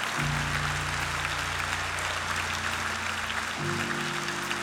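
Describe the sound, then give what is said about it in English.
A church audience claps steadily in dense, continuous applause during a service as people come forward, with sustained low organ or keyboard tones humming underneath throughout. “Keep clapping, church.”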